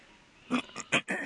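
A person coughs several times in quick succession, about four harsh, throaty bursts, fairly loud against a quiet background, with no talking.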